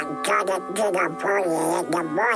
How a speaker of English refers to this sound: I cannot imitate this one, but it is Donald Duck. He's one of my favorites.